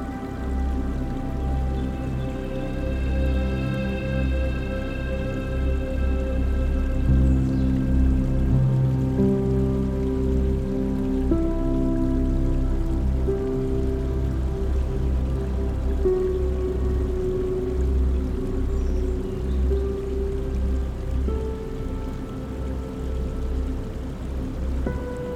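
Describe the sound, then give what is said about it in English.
A stream flows steadily and continuously throughout, an even wash of running water with soft sustained tones layered underneath and no voices. “Now imagine as you're cooling off in the stream”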